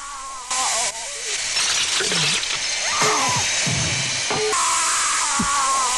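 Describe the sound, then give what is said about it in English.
A shrill, whining drill sound effect from a film hums steadily through a wash of hissing noise, with muffled vocal cries and moans rising and falling over it. “I did have one I did have one sound effect of the drill fuck.”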